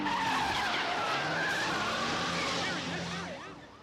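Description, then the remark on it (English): A stolen car roars through at speed with squealing, skidding tires, a loud, dense rush of engine and rubber that holds steady before fading away as it pulls off. “Captain, some nut went through here in a stolen car.”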